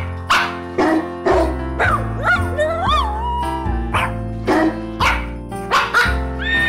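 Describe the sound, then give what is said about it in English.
Dogs bark in a steady, pitched rhythm over a bright music backing, their yips and woofs arranged to follow a festive carol melody, with a few sliding howl-like notes in the middle. “This first track is called, you gotta be fucking kidding me. ….”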